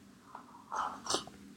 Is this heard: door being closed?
no